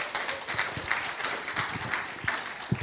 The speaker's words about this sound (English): Give her a clap, please.